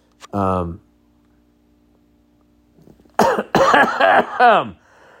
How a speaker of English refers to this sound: All right. And with that, I think we're going to move on to the content here before I start having a fucking coughing fit.